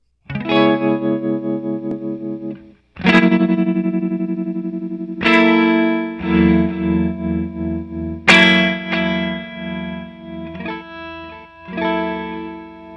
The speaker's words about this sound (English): Okay, so far I've heard like a tremolo thing, a delay thing, an envelope thing, a reverse. Yeah, it's chorusy at first.